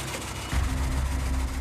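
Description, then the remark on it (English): A car engine idles roughly, a steady low rumble with an uneven, skipping misfire beat coming out of the exhaust system as the car shakes badly, growing heavier after a brief moment and continuing without any talking. “You can hear the skip coming out of the exhaust system.”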